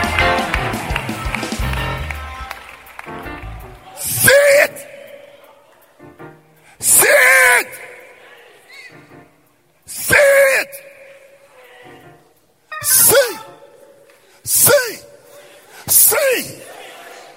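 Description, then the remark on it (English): A crowd erupts in loud screaming and shouting, six forceful bursts of a few seconds each, separated by a single voice talking energetically in between. “Come on, scream like your voice is up.”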